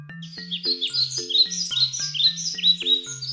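Busy, high bird chirps and tweets flutter continuously over a steady, rhythmic low pulsing tone, with no voices present.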